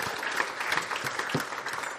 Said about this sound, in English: So give them a clap. They were fantastic.